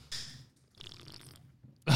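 A wet slurp of a drink comes in two hissy, airy pulls, a short one followed by a longer one, with no talking.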